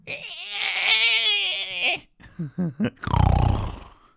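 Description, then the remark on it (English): A person imitates a pig: a long, high, wavering squeal, then three quick nasal grunts and a final deep, rough snorting grunt, all loud and with no talking. “I'm a pig!”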